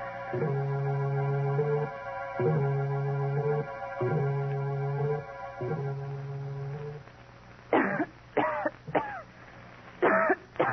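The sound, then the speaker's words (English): A steady droning, pulsing hum plays for several seconds, then a woman breaks into a series of sharp, loud coughs in quick bursts, with no talking. “Then I went to bed and waited impatiently for … to start coughing.”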